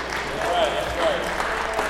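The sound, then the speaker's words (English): A church audience claps together in a steady, dense patter of applause that holds at an even level for a couple of seconds, with a few brief voiced sounds rising faintly over it. “So if you find an appropriate clapping moment, feel free to do that. And that actually was one.”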